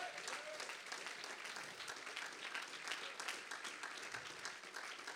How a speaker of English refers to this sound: If you know what I'm talking about, why don't you give the Lord a hand clap of praise?